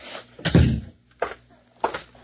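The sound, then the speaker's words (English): A door leading in to the captain's office, in Cincinnati, swings shut with a heavy thud, followed by two sharper, lighter knocks of the latch and frame settling, with no voices. “Right through that door, Mr.”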